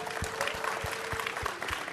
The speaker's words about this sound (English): We've got two other guests as well here. Brock Stewart, Griffin Jax, you know them well. Round of applause for both of them.